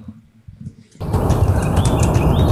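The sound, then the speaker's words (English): A ruby-crowned kinglet's warbling song comes through faintly in the background, small rising and falling phrases half-buried under a loud, steady rush of noise that kicks in after a quiet first second. “So in the background, you can hear some of the warbly sounds of the ruby-crowned kinglet.”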